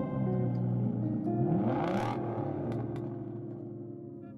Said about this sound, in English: You hear the car pull out outside of the cobbled driveway as your trembling hands pour scotch over ice in the glass that she got you last Christmas.